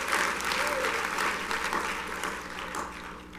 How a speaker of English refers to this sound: Can we all clap our hands unto the Lord and just thank him? Thank you, Jesus.